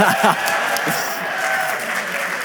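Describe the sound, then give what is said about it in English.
Steady applause from a crowd lasts a couple of seconds as couples are introduced, a dense wash of clapping with faint voices mixed underneath. “I might say hold your applause to the end because this will sound a lot like a popularity contest.”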